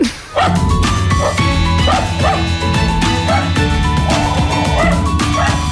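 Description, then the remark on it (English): A dog barks repeatedly in short, loud bursts at an irregular pace, layered over a steady, sustained musical backing that continues throughout, on the radio show Weekend Ireland AM. “Aiden is going to ride a dog bareback around the studio.”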